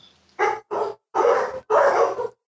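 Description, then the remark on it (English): A dog barks four times in quick succession, two short barks followed by two longer, louder ones, with no talking over them. “See, even the dog agrees with me.”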